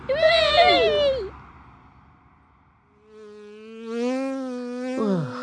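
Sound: bees buzzing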